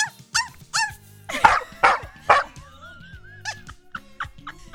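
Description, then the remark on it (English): A person imitates a dog barking: a quick run of sharp barks that grow louder in the middle, then a thin whining note and a few softer, clipped yips at the end. “And I have a recording of a dog barking, but I like to do it myself, and then I do”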